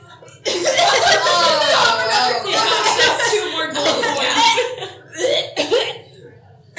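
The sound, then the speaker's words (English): A voice loudly imitates coughing up gold pieces: several seconds of rough, gagging, hacking noise, ending in a few short sputtering coughs. “So you cough up like 4 gold pieces because that's what you coughed up earlier.”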